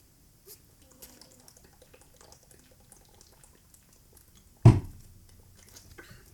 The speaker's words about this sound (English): Don't forget, drink plenty of water. I have some water right here that we're going to drink together.